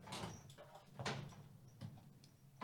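A top drawer slides open with a few short scraping, rattling bursts, fairly quiet, with no one speaking.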